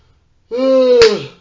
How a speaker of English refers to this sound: Yawns.